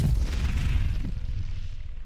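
A fireball is whipped down and explodes, roaring out as a heavy, sustained low rumble with a hissing crackle on top, loud throughout and slowly fading over about two seconds, with no voices.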